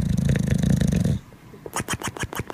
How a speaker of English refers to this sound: All right, this is the weird and obscure. This is Snoring Bulldog. Tell me what you think.